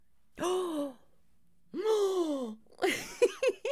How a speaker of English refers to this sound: Dramatic gasp.